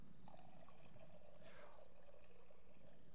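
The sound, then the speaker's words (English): Water is poured into a baptismal font during a Christian baptism, a steady, quiet trickle and splash that swells briefly midway through. No one speaks. “Send your Spirit to move over this water that it may be a fountain of deliverance and rebirth.”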